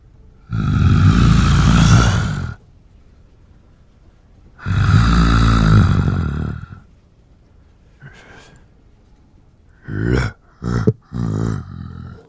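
A deep, rough creature growl rumbles in two long, loud bursts, followed by a few shorter, choppy snarls and snorts, unaccompanied by talk.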